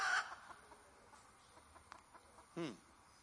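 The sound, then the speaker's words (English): A mother hen gives a sharp cluck at the start and another throaty cluck near the end as a predator approaches, with faint, scattered chick peeps in between against a quiet outdoor background. “Those little hens are safe right now.”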